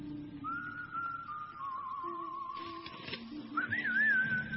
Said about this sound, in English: Who actually whistled on his own record?